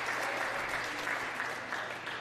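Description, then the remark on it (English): A crowd applauds the leader of the Democratic Party steadily, many hands clapping at once into a dense, hissy wash of sound that holds an even loudness throughout, with no voices standing out. “They're clapping her.”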